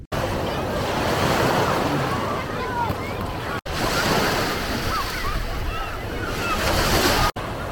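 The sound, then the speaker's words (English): Waves break and wash onto a beach in Gdansk, Poland, in a continuous surf roar, with wind blowing across the microphone and two brief cuts in the sound. “Do I recommend the beach? Yeah, maybe. I mean, not the best for swimming. The water does feel good.”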